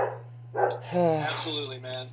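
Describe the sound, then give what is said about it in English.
A dog on a farm barks several times in quick, uneven succession. The barks are loud and tonal, with a steady low electrical hum running underneath. “Girl, that's enough. We're podcasting.”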